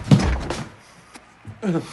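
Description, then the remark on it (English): In a film scene, the character Dewey Cox kicks open a backstage door after a show with a loud, heavy thud and a brief rattle, followed by a smaller knock in the quiet that follows before a man's voice starts speaking. “This is by the way, like he's just getting off like a show, and he goes backstage, and Tim Meadows, who's his drummer, who's hilarious in this movie, Dewey Cox kicks in the door, and Tim Meadows is smoking a little pot.”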